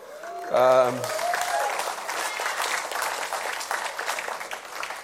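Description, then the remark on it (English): A short vocal whoop from the crowd, then steady audience applause, a dense patter of many hands clapping continuously at moderate loudness for several seconds. “And thank you for the applause, because I did remember.”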